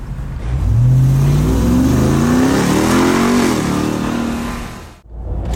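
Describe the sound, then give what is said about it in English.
A TRX pickup truck engine revs hard and accelerates onto an on-ramp in Oxnard, California, its low growl climbing steadily in pitch through several gear pulls before cutting off abruptly near the end. No one speaks. “On ramp. Here we go. In the TRX.”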